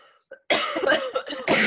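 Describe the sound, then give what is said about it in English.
A loud burst of harsh coughing with rough throat clearing, several bursts run together after a brief quiet moment, with no talking. “Time out. I just have to cough.”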